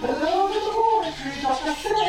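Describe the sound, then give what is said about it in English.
A monkey chatters steadily for about two seconds, a loud, squeaky, warbling stream of calls that swoop up and down in pitch with barely a pause. “Abigail, is that a monkey? Yes, we seem to have acquired a monkey.”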